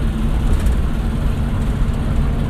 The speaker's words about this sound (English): I hope y'all can hear me over the engine and stuff.